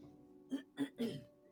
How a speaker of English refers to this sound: He starts coughing again, where he stopped for a few minutes.